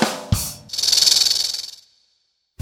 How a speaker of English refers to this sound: You might not think it's hysterical or funny when a snake hisses at you. When a snake feels threatened or scared, it sticks out its tongue and makes that hissing sound. That's the way a snake says, "Back it up, buddy."